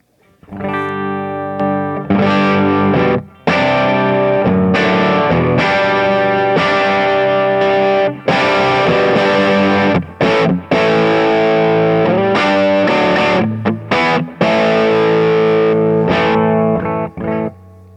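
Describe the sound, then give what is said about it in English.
Loud electric guitar, a Gibson, played through an amp, going through the amp's channels and then with a Klon pedal kicked on, distorted, sustained chords strummed and held, broken by a few brief pauses over about eighteen seconds, and no voices. “So I'll go through the channels on the amp, and then I'll kick on the Klon.”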